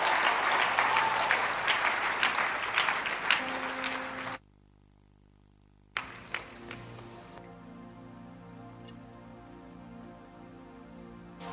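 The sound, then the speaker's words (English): A church audience claps hands to welcome a woman about to sing a song, in a loud, dense burst of applause lasting a few seconds, then it cuts off abruptly; after a pause, a few scattered claps sound faintly over a steady low hum. “Clap your hands for her.”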